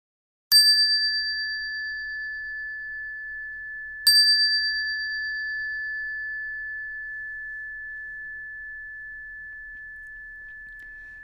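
A meditation bell is struck twice, about three and a half seconds apart, to begin a chanting practice, each ring sustaining a clear, pure tone that slowly fades in the quiet.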